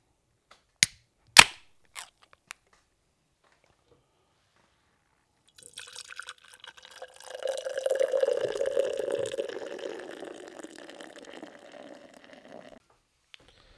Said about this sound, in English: I'm really curious to see what the fuck the Overripe does, and we're going to get right into it. This is third beer of the lineup, and let's get this fucking pour going.